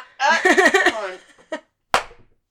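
A burst of hearty laughter is followed by a short pause and then a single sharp slap of a hand smacking a knee, before fading out.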